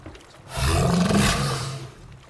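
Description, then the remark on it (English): A single deep, rumbling sea monster roar swells in after half a second, holds for well over a second with a rough, growling low end and airy noise above, then fades out, as sea monsters come out at dusk. “The sea monsters are coming out now that it is dusk.”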